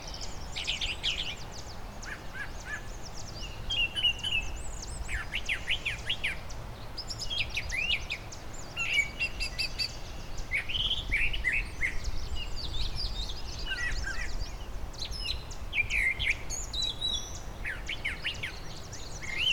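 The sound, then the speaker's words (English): A thrasher sings from high up in a tree in a parkland meadow, repeating bright, chirpy phrases over a steady outdoor backdrop of low rumble and faint insect hum, with several other birds calling around it. “They might stay low down sometimes and sing.”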